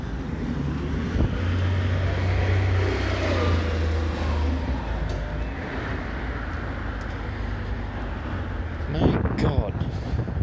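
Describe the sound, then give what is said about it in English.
Steady roar of passing car traffic on a busy New York City street, with engine rumble and a low droning hum, plus brief voice-like bursts near the end. “I can cross. Hopefully I don't get hit by a fucking car. In the middle of New York City.”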